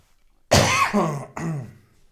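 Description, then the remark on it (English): A loud bout of coughing and throat clearing from a frog in the throat: a harsh rasping burst followed by a second gravelly clearing, with no speech, separated by a brief gap. “Give me a second, let me cough for you.”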